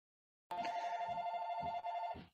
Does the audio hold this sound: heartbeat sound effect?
no